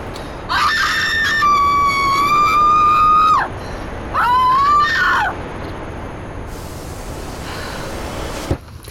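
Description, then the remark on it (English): A person lets out two long, loud screams, the first about three seconds and the second shorter, each rising sharply, holding, then dropping off, over faint background noise. “I'd like to scream.”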